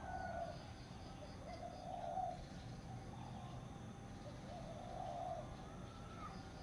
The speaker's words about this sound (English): Even though my meditation this morning was challenged by so many noises and some unpleasant for me, I could still choose to practice giving my undivided attention to the sounds of the birds.